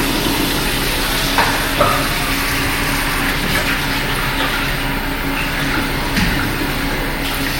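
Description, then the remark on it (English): Tap water runs in a steady, hissing stream for several seconds in a restaurant bathroom, with a low hum beneath it and occasional faint splashes and clinks as hands are washed. No one speaks. “Sure, okay, so now I had used the bathroom, but I still had to wash my hands.”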